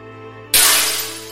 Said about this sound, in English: Over time, she smashed the mirrors, as they never reflected the vision of beauty that they used to.